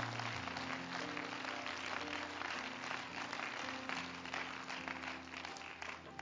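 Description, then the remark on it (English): An audience claps their hands in a dense, continuous wash of applause that stays steady and loud for about six seconds, with low sustained tones running underneath and no voices. “Why don't you clap your hands again to Him?”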